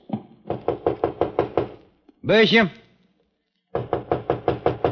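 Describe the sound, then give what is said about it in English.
Two bursts of rapid, firm knocking on the locked door of Bishop's home on the next floor, separated by a man's voice calling out once in between. “Door's locked. You got a pass key?”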